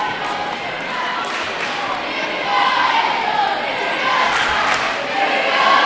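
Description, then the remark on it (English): A large arena crowd of rival fans at a game cheers back and forth in a cheer-off, a continuous loud roar of chants swelling louder in the second half, with many voices blending together and no single speaker standing out. “Having a bit of a cheer-off here.”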